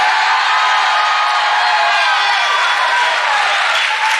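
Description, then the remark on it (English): A large audience shouts and cheers in a sustained, loud roar, with whoops and scattered clapping blending into a dense wall of crowd noise throughout. “I'm okay with shouting about it, but somewhere along the way, we got to walk into a dark, delusional, deceptive world and tell them the truth.”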